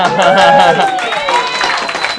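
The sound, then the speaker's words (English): A crowd claps steadily in a dense, continuous burst, with voices and a few cheers mixed in over the applause. “Clap it out.”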